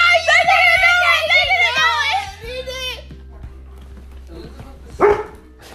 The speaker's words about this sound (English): Dog!